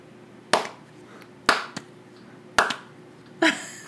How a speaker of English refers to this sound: The weirdest slow clap in podcast history